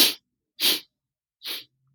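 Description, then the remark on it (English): Three short, sharp sniffs drawn in through the nose as part of a breathing exercise, each a hissy burst of air separated by brief silences, with the last one a little softer. No one speaks. “As a matter of fact, make the sound when you breathe in one, make that sniff.”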